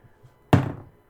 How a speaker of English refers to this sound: And on that note, let's roll the dice once again.